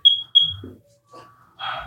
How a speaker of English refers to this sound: That's just a test of that sound. Interesting. Doing a test for the smoke alarms. This is a test for the broadcasting system.